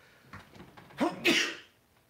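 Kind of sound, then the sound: human body sound, sneeze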